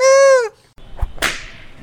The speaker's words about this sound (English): It's a bird! It's a plane? Is that a flogger? Someone's gotta be having a good time.